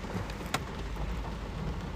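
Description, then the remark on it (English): A sudden thunderstorm with lightning: steady, heavy rain hisses without pause over a deep, rumbling low roar of thunder, with one sharp drop or crack standing out briefly near the start. No voices. “Because it's just storming out of nowhere.”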